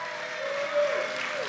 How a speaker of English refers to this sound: While you're at it, go ahead and clap for Jesus, and it better be a lot louder. Come on now.